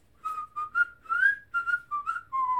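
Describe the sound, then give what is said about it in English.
A person whistles a slow, clear melody, a series of sustained pitched notes that rise and fall. The whistling is moderately loud, with no voices. “And then he whistles.”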